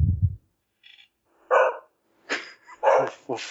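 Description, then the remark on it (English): Several dogs bark in a short, irregular flurry, sharp yaps overlapping near the end, preceded by a low rumbling thump; moderately loud, with no talking. “It had the power to summon dogs.”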